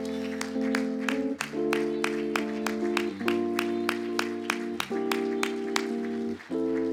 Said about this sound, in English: Let's clap our hands before we leave this place tonight.